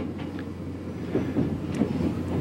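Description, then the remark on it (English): A steady, low rumble of a Tokyo subway train heard from inside a carriage, with faint rattles and clatter rising and falling over the continuous drone. No one speaks. “We're on the Tokyo subway right now.”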